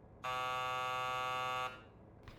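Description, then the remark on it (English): A single harsh electric intercom buzz, as a duty sergeant thumbs the intercom button, sounds steadily at full loudness for about a second and a half, rich in evenly spaced harmonics, then cuts off abruptly into low background hum. “The duty sergeant gave me a greasy look, then picked up the phone and thumbed the intercom button.”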